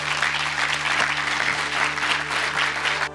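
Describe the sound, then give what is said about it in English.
Sustained applause from a sizable audience thanking two ministers after their talks, a dense, even patter of many hands clapping at steady volume for about three seconds before stopping abruptly. “And we thank both of the ministers with a round of applause.”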